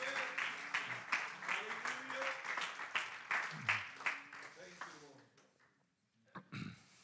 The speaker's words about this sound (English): Praise the Lord. Can you give him a hand clap of praise in this place?